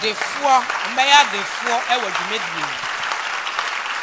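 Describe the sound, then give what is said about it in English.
An audience claps steadily, a dense, continuous wash of applause lasting about four seconds, while a raised voice calls out over it during the first half. “If you are clapping, it shall be well.”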